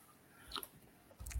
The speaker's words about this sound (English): I had to take a little sippy sip.